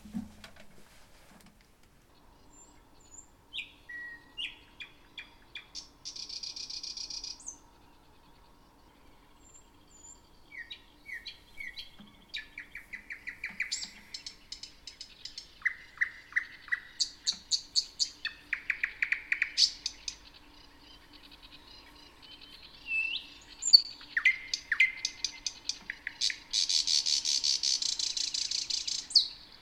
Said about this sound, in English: So we'll play a short clip of the thrush nightingale song now so you can hear what it sounds like.